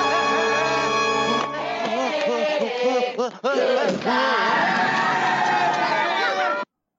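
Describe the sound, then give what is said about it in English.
A loud crowd cheers and shouts excitedly as a performer does a crowd dive at the end of a stage act, with many overlapping whooping voices swelling over a sustained musical chord at the start, then cutting off abruptly. “as you can hear, that's the end of the act, except for Homer doing a crowd dive”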